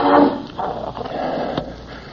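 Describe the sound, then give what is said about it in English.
A large bloodhound barks and bays in a quick series of deep, harsh calls, the first one loudest, followed by several rougher barks over a muffled, crackly background. “But the bloodhound wasn't having any.”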